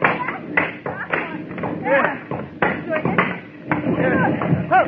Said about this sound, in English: Here are some benches we haven't chopped up yet. That's the stuff. Keep chopping.